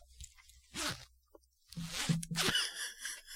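A zipper rasps in a few quick pulls: one short zip, then a longer, scratchier run ending in a sharp final tug. No one speaks.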